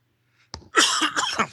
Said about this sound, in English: So I just took a drink of water right when you said he slaps piss out of it. I almost choked to death.